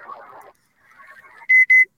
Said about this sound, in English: here we are on that 7015. And again, we've got some Morse code going. So it's out there.